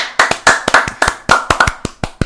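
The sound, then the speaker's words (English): Hands clapping in a quick, uneven burst of about a dozen sharp, bright smacks over two seconds, loud and crisp with no voices, like a short round of applause. “Yeah, that was a lot less bad on the ears than my clapping was.”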